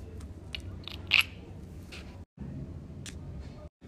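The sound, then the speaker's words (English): Gritty, rasping scratches of a quartz mineral sample dragged across a glass plate and a nail in a hardness test, in several continuous strokes with a brief shrill squeal early on and two short pauses between passes. “The quartz scratched both the glass plate and nail, so it is the hardest of the three minerals with a hardness of more than 5.5.”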